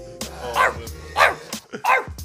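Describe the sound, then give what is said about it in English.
A person's voice mimics a dog, letting out three short, evenly spaced barks that each drop in pitch, moderately loud, with no talking in between. “I had to back up. I didn't want the bark to be super loud.”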